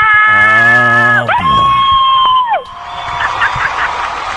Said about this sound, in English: All right, calm down, people. Always got people in the audience who want to make noise.